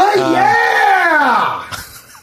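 A loud, drawn-out yell after a sneeze, the voice sliding down in pitch for over a second before a short breathy burst, alone, no talking.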